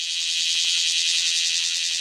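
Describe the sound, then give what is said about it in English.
A male cicada, freshly hatched and singing from a perch, buzzes as loud as it can without pause: a steady, shrill, high-pitched drone that holds level for the whole two seconds, with no voices. “Once they hatch, they climb onto the nearest perch and sing as loud as they possibly can.”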